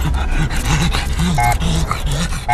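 A small flat-faced dog pants heavily and continuously, each rapid breath rasping and wheezing with snorty, whistling tones; no one speaks.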